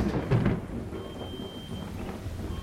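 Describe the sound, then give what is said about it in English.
A deep thunderstorm rumble rolls through, strongest at the start and then settling into a steady wash of rain-like hiss. No voices are heard, just the continuous stormy roar. “For just a second, after Ace asked if it was just a coincidence that the only dinosaur ever found with an ornament around its neck was also the first one to wear feathers, the storm inside the energy ball pushed against Ace's fingertips.”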